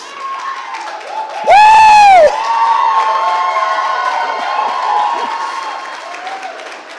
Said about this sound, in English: woo, I'm going to join you. I don't know what we're shouting about.